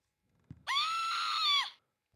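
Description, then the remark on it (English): A woman lets out one loud, sustained high-pitched scream lasting about a second, holding a steady pitch before dipping slightly as it cuts off, with nothing else around it. “That's a lady screaming.”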